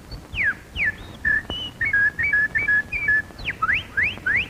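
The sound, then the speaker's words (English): A person whistles a bird imitation: quick rising and falling chirps, then a run of short warbling trills, ending with more upward-swooping chirps. Clear and fairly loud, with no talking. “I whistle and twitter and sing like a bird.”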